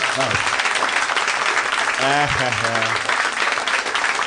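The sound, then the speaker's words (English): A live audience claps steadily for several seconds in answer to a poll on whether their parents are in a first marriage, a dense crackle of many hands from a large crowd, with a brief spoken exclamation rising over the applause midway. “Applaud if your parents are first marriage.”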